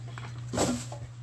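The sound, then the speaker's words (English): A dog named Chewy gives one short yawn, a breathy, rising-then-falling squeaky exhale lasting under a second, over a steady low electrical hum. “That was him yawning.”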